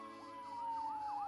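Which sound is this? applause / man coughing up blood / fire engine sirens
fire engine sirens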